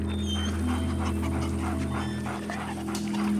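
A dog pants rapidly and steadily, with a couple of faint high whimpers slipping in, all over a continuous low hum in the background.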